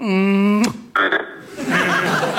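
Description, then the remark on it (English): A single loud, drawn-out toad croak rings out, then gives way to a brief sharp sound and some breathy, rustling noise. “If he's so sure this is a harlequin, make him come here and kiss it.”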